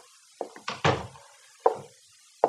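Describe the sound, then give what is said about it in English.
The door of a post commander's office is pulled shut: a few wooden clunks build to a heavy thud, followed by two sharper, isolated knocks with pauses between them. No one speaks. “Close the door, Sergeant.”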